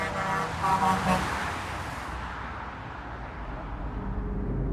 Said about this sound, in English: She must have been excited to show her best friend, Julie, how fun it was to get honks and waves from the cars racing by below.